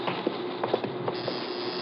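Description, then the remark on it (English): A steady electric door buzzer, rung to release a door so it can be pushed open, drones for about two seconds at an even loudness, with a few soft clicks over the buzz. No one speaks. “I'll ring the buzzer. Just push on the door.”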